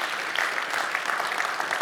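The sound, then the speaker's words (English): Steady applause from a sizable crowd, dense overlapping claps sustained at an even level throughout without pause, as an audience applauds a man for leading worship that morning. “can we just give him just a round of applause for leading this morning?”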